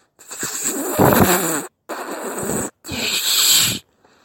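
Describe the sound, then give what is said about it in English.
Three breathy whistle blasts in a row, each about a second long, mostly rushing air with only a faint, thin high tone riding on top, sounding weak and airy. “Have you got the whistle with you now? Yes, in my pocket. Anyway, I have a blow like this.”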